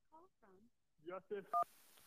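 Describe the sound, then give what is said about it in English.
A single short touch-tone beep from a phone keypad rings out clearly near the end, following a few brief voice-like murmurs, then quiet hiss. “So, anyways, let's jump to the phone lines.”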